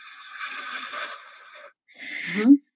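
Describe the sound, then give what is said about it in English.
Audible Ujjayi-style breathing: a long, airy, ocean-like breath through a constricted throat, a short pause, then a second breath that swells and ends in a brief throaty rasp. “And after about maybe 30 seconds, I realized I was Ujjayi breathing.”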